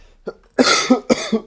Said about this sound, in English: You heard that cough? Why do you think I cough like that? The devil. The devil's lettuce. That's why I cough like that.